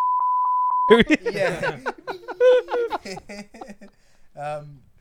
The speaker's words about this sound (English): I'll just beep whatever names, bro. Yeah, cool. Beep it out.